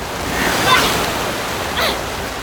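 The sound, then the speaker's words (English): Steady watery wash with a couple of louder splashing swishes of paddle strokes pulling through water during a race, moderately loud, with no voices. “I'm paddling.”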